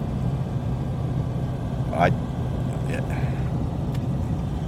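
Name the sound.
car interior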